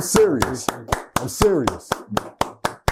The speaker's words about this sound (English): can we just clap for this brother? Please.